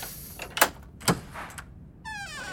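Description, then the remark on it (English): Two sharp metallic clicks of a door being unlocked, followed by a creaky squeal as the door swings open. Moderately loud, with no one speaking. “I'll unlock the door.”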